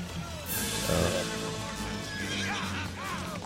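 A horse neighs during a horse chase scene in the film Willow, its whinny rising and falling in shrill, wavering bursts toward the end, over a dense, rumbling wash of movement and background noise that stays loud throughout.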